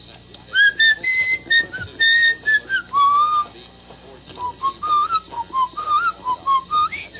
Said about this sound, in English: I'm whistling something. What was I just whistling there? Which is another whistling song.